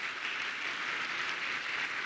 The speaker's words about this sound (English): Would you join me in just thanking God with a round of applause to the Lord for the good things that He has done?